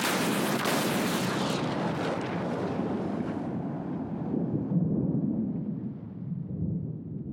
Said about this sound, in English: Commander Nibbles dove through the window of the station just as an explosion of blinding white light enveloped the crater.